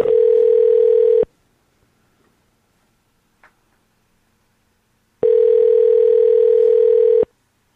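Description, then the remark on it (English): A phone ringback tone heard over the line: two steady, loud buzzing rings about four seconds apart, each lasting just over a second, with near silence between them. “Let's call. Let's hope she's not using AOL phone line.”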